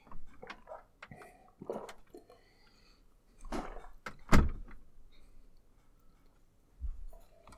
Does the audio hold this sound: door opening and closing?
yes